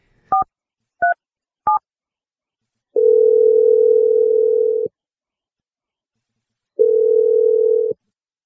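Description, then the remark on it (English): Three quick keypad dialing beeps as the radio show Brooke and Jeffrey in the Morning calls a woman, then the phone line ringing on the caller's end: two long, steady ring tones separated by a pause of silence while waiting for someone to answer. “I will call her for 4 straight days until she picks up the phone.”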